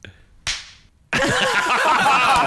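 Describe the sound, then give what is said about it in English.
A banana skin slaps once, sharply, against a head, with a brief decaying smack. A moment later a loud burst of overlapping voices and noise takes over. “But the sound of the banana skin hitting the head is quite a thing to behold.”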